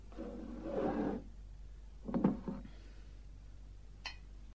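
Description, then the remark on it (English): Whiskey pours into a glass in a soft, low splashing stream lasting about a second, followed by a shorter burst of handling noise and a single faint glassy clink. “Could somebody give Mr. Baxter a glass of whiskey?”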